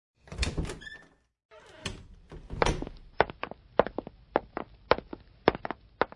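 A door-like clatter and thump open the scene, then brisk, evenly spaced footsteps click steadily across a hard floor, approaching, clear, with no one talking.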